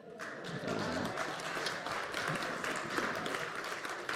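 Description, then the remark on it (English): Steady audience applause for everybody and all the helpers, a dense, continuous patter of many hands clapping at even loudness for several seconds, with a faint murmur of voices mixed in. “Yes, give everybody a round of applause and all those helpers and you guys as well.”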